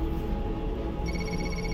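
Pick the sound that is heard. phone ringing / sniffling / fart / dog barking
phone ringing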